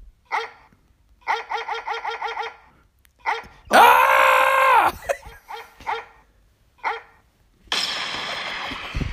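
A dog barks close by, single sharp barks and a quick run of about six in a row, broken by a couple of longer, louder rough bursts. No one speaks.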